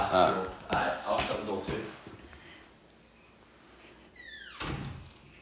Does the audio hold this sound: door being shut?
yes